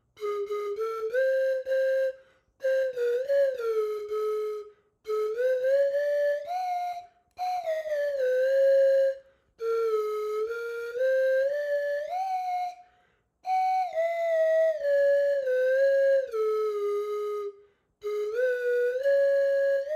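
A slide whistle plays a slow melody in breathy, sustained phrases, its pitch gliding smoothly between notes, with short pauses between phrases. It sounds loud, with no talking.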